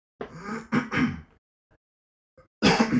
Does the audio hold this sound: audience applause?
no